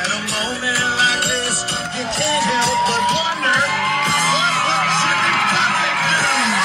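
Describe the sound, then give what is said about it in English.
A bar crowd of about 80 people erupts in loud, sustained cheering, with whoops, yells and shouting voices overlapping continuously for several seconds, energetic throughout, as a singer comes out during a singer's live show. “Watch the crowd go crazy here.”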